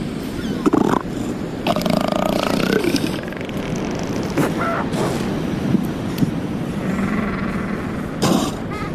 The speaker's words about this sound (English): And there'd often be a harem of elephant seals down on the beach just nearby, and they'd be grunting and snorting and fighting, and those are the kind of sounds that you wake up to.